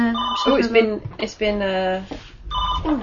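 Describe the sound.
An electronic ringing tone from a fax machine sounds in a few steady, buzzing bursts, fairly loud, with voices murmuring around it.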